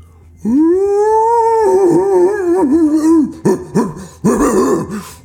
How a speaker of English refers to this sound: As you do this, you all of a sudden hear this deep howl.